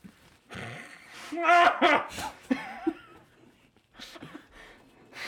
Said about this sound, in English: And you don't mind if I blow my nose?